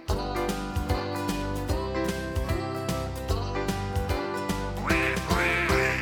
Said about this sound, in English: but the one little duck with the feather on his back, he led the others with the quack, quack, quack. Quack, quack, quack.